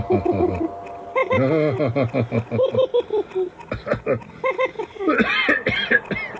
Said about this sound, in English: I can't manage this laughing business anymore. It makes me cough. I'm sorry.